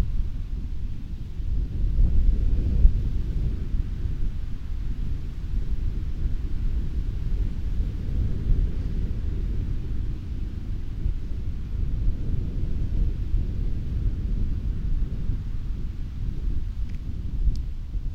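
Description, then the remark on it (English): Steady, roaring wind buffets the microphone, a dense low rumble with gusty surges that never lets up across the whole stretch, loud with no voices. “Ooh, it's windy.”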